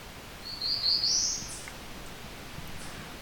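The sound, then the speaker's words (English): A quick, high-pitched bird song sped up, recorded in a partially open, partially old-growth area: one rising buzzy trill of a couple of thin notes lasting about a second, over a soft steady background hiss. “This is an accelerated version of the Beer Beer Bees song.”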